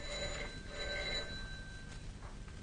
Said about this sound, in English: She's obviously out. Mm. Or very deaf. Not answering the phone.